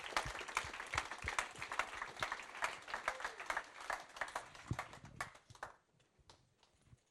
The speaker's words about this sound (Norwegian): La oss ta godt imot henne. La oss gi en god applaus.